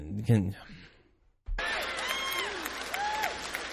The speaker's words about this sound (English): It's apparently an applause line.